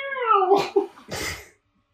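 A cat lets out a drawn-out meow that slides down in pitch, then a brief raspy, hissing yowl follows, a cat scare in a film. Fairly loud, with no one talking.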